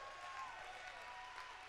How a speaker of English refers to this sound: Somebody clap your hands and give God the glory.